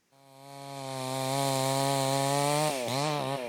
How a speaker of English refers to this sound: In a light rain, among jumbled spent Russian artillery shells, a Ukrainian man saws away at a half-burnt tree, its top a fray of splintered wood.